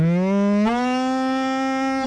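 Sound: cow mooing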